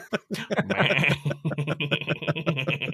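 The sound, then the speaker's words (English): A goat bleat sound effect played from a soundboard: a loud, drawn-out wavering bleat that breaks into a rapid stuttering series of short pulses, with no talking over it. “Hang on, let me get my goat soundboard going.”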